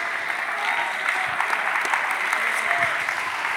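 An audience claps steadily and densely during a sermon, the applause sustained at an even, fairly loud level for the whole stretch, with no pauses or distinct individual claps standing out.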